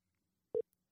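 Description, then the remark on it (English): A single short electronic tone of a phone line ringing on an outgoing call to a guest from Enneagram Parents, one brief steady beep over near silence, with no voices present. “Oh, it's ringing.”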